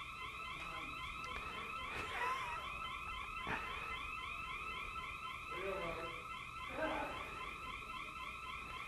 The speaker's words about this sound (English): You caused the alarm to go off.